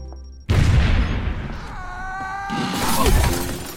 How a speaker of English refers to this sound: Uncle Fester! Brother! Don't worry, I'm okay. The plate glass window broke my fall.